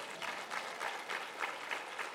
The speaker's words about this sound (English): You can clap. It's okay.